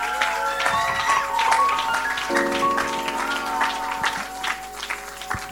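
An audience claps in welcome, a dense, steady patter of many hands lasting throughout, with sustained keyboard-like tones humming underneath and a few scattered voices.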